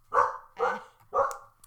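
A dog barks three times in a steady rhythm, each bark loud and full-bodied, with short silent pauses between them and no talking.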